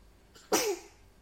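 A single sneeze up close: a quick sharp intake of breath, then one loud explosive burst with a brief voiced tail that drops away into quiet.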